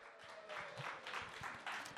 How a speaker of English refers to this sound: Give him a round of applause, everyone.